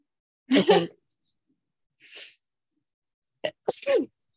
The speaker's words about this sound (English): I gotta sneeze.